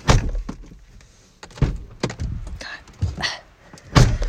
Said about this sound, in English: Hold on, I'm cold. I'm gonna close the door.